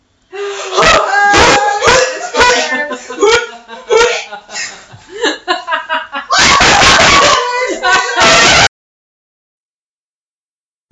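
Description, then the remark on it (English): Several loud slaps of a hand hitting at a spider right by the microphone in a rapid cluster, coming after a stretch of shrieks, squeals and nervous laughter from a couple of people. “Ew, why are you just gonna like slap it?”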